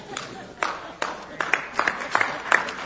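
Scattered audience clapping: a loose, irregular patter of sharp claps at moderate volume, thickening toward the end, with a faint murmur underneath.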